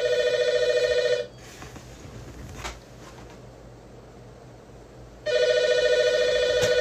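A telephone rings in two loud electronic bursts, each about a second long, separated by roughly four seconds of quiet room hum with a faint thump in between.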